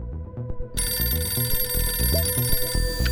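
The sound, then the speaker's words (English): A telephone bell starts ringing about a second in and keeps up a bright, continuous metallic trill through the end, layered over a low, rhythmic musical backing. No one speaks. “And what you need to know is that for this week's spy, it all started with a phone call.”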